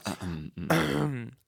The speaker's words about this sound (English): Do you need a cough drop?